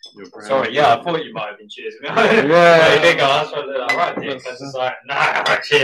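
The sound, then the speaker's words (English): Beer glasses clink together in a toast, bright knocks of glass on glass, mixed in with lively overlapping voices and laughter. “I'm going to cheers you on your new one.”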